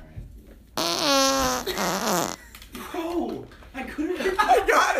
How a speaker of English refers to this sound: And now for our fart of the week